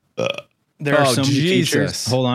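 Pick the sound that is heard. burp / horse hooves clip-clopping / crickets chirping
burp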